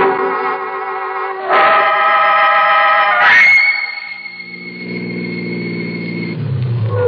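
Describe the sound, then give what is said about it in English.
A car engine drones loudly and revs up twice as it changes gear, then eases into a lower, steady rumble that drops further as the car slows to pull in off a highway under trees. No one speaks. “I'll pull in here. Trees will cover the car in case anybody happens to be out late on the highway.”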